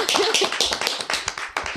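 Quick, sharp hand claps rattle along in a dense, fairly steady run for under two seconds, loud and bright, like a few people applauding together.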